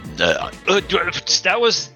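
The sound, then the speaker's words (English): A throaty burp breaks out among a few short voiced bursts, with people talking around it at fairly loud volume. “That was a shock burp.”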